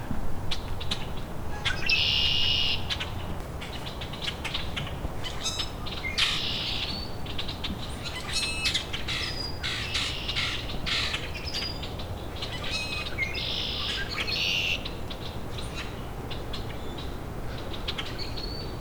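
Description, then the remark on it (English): A rusty blackbird, feeding on flooded ground, calls about 6 feet away, giving several creaky, squeaky bursts at irregular intervals over a steady background of other birds chattering and rustling. “And there was another one at a distance, but as I recorded that, that rusty blackbird that was in front of me was, there it is again, only like 6 feet away.”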